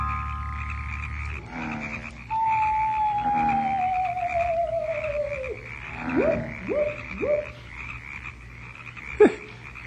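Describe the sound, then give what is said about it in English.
Frogs croaking on an island over a steady night-time hum: one long, slowly falling call, then three quick rising croaks in a row and a single sharp croak near the end. “Our friend, the owl. And the frogs.”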